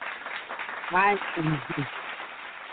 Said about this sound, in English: Let's go ahead and throw some claps on the floor.